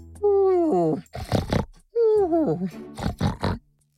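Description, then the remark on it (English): A voice imitates a pig snoring during a nap while bathing in a small pond in the shade of a tree in a forest, in two cycles, each a drawn-out grunting groan sliding downward followed by rough, snorting breaths, fairly loud. “Mr. Pig was snoring, having a good nap.”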